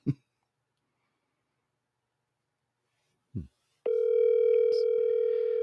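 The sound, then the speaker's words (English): A telephone call being placed: two short, low thumps, then a steady, unbroken dial tone drones on to the end with a couple of faint clicks over it. “I'm going to try calling”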